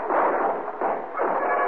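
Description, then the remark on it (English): Every gun in a room fires together at a man silhouetted in a doorway in a loud, dense volley, the shots blurring into a continuous roar that swells in three overlapping bursts, with no voices. “Every gun in the room opened up on him.”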